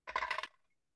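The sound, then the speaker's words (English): Dice are dropped and clatter onto a hard table, a quick burst of clicking bounces over about half a second before rattling to a stop. Fairly loud, with no voices. “I can absolutely roll cool for that. When I'm not dropping my dice.”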